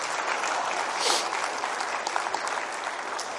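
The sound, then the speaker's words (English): An audience at a church service applauds a family while seated, a steady, dense wash of many hands clapping at an even loudness for a few seconds, with no voices rising above it. “We could rejoice with them right by a round of applause while they're seated.”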